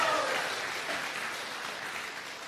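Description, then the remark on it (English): A church audience at MRAC cheers and claps steadily, a dense wash of hand claps with a few whoops rising early on, holding at a fairly even loudness throughout. “Can we have a better cheer than that?”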